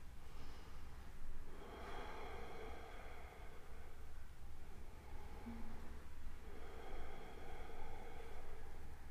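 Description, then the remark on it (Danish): Slow, deep yoga breathing, three breaths taken while holding a twisting pose with the chest open, with long, airy inhales and exhales rising and falling over a steady low background hum, fairly soft, with no talking. “Tag tre åndedræt her.”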